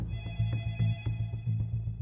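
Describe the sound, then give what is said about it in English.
A telephone rings in a family home in Norwood, North Carolina, on a Monday in July 1986, just after supper. It rings with a steady, warbling electronic trill, its pulses repeating rapidly and evenly, moderately loud, with a low hum underneath and no voices. “It was Monday afternoon, and by the time we got through supper and everything, the phone rang.”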